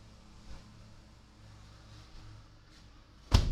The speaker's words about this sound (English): Hold on, I got to close the door.